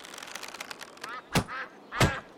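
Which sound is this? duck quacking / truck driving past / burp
duck quacking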